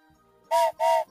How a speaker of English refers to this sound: Yes, and here's that whistle.